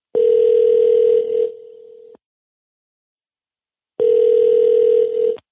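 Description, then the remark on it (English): A telephone dial tone sounds loud, a steady buzzing hum that fades briefly, cuts to silence for about two seconds, then returns for another long burst as a phone call is placed. No one speaks. “This episode begins with a phone call.”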